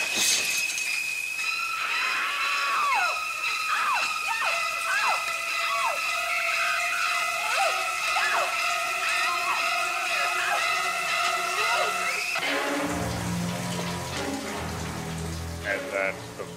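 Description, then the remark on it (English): Shrieking horror-film strings stab out in repeated sliding screeches over a steady rush of running shower water, in a movie scene where a shadowy figure enters, pulls open the shower curtain and stabs a woman, then cut off abruptly, leaving lower, murkier tones beneath the water. “We hear Bernard Herrmann's amazing strings.”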